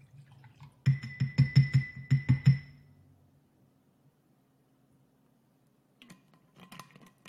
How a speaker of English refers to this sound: Got me some kombucha. My favorite kombucha. Pour up in my glass.